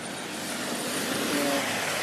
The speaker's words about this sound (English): But I love the sound of cars on wet tarmac. It reminds me of Gran Turismo 3 on the PlayStation 2. It's one of the first games to have a really beautiful sounding wet surface. Listen to this, look.